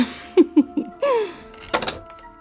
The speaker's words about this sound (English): Don't worry, that gets knocked over all the time.